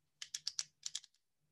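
A quick run of sharp clicks, four in a row, a brief pause, then four more, crisp, from a pen on a desk being clicked repeatedly, with a faint low hum underneath and no voices.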